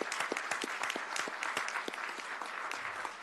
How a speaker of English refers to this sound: So let's give you all a round of applause.